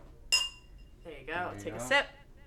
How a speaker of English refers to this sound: Before we get started, I think it's time for a cheers. So, everyone, grab your glasses. Nice little...